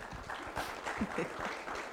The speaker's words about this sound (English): Démosle un aplauso al Señor, hermano. Let's give applause to the Lord.